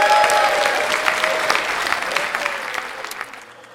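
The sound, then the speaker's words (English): An audience at a quiz show bursts into applause, dense rapid clapping that starts loud and gradually tapers off over a few seconds, with no voices over it. “Applause.”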